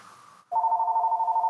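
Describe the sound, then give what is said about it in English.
A landline house phone rings with a loud, steady electronic warble that trills rapidly and continues unbroken after a brief quiet moment. No one speaks. “Hang on, the house phone's ringing.”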